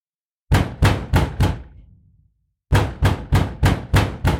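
Heavy banging on a house door at 8:00 at night: a rapid run of five loud, booming thuds, a brief pause, then another insistent burst of steady blows. No voices.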